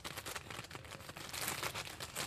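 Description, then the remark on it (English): A homemade thunder sound effect: a steady, crackly rustling and crinkling noise that swells louder partway through and lasts a couple of seconds, with no voices over it. “That sounds like thunder.”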